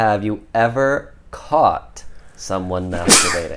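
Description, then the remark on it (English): A person asks a question in a steady voice, and right at the end a sudden, loud sneeze bursts out, sharp and breathy, cutting across the talk. “Have you ever caught someone sneezing?”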